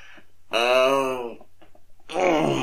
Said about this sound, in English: Excuse me, I had to yawn and stretch.